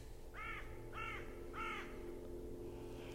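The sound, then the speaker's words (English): A carrion crow gives three harsh, evenly spaced, slightly angry-sounding caws, clear over a steady low outdoor rumble with no other voices. “The carrion crow caws so often gives three of those slightly angry calls.”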